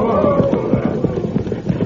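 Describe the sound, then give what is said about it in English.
Horses' hooves clip-clop in a quick, steady rhythm of sharp knocks, coming to a stop, moderately loud over a low rumbling background, with no voices. “Just stop them horses right there”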